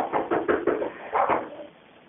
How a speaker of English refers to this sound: Nope, he's at the back patio door again. I can hear him banging again.